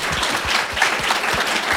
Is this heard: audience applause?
yes